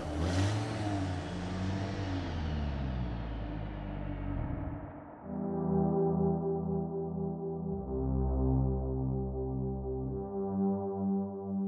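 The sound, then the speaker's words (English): Heavy engines of semi trucks rumble and rev in highway traffic, the pitch climbing, dropping through a downshift, then droning steadily again. No one speaks. “Traffic rumbled around him. Pale faces stared at him from behind car windows. Semis downshifted, sounding like big animals out of breath.”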